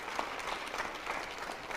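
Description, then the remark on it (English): A crowd claps hands in a dense, steady burst of applause, many overlapping claps forming a continuous crackling wash with no voices over it. “Now clap your hands.”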